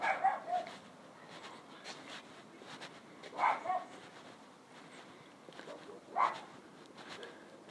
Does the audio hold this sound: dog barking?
yes